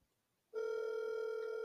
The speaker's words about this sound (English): Go to the next one. Call them. Okay, will they pick up? Let's see.